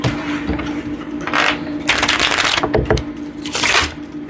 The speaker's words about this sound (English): You can also shuffle your cards back. Cards back in.